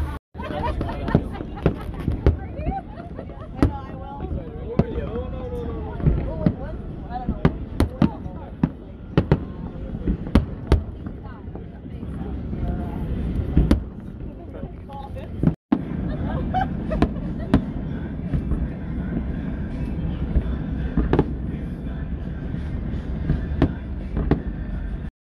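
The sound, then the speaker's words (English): Repeated fireworks bursts crack and boom at irregular intervals, some sharp and loud, over a steady low rumble and the murmur of a crowd chattering in the background. “The fireworks started off a little bit slow. Slow in the middle, but it was a really nice ending.”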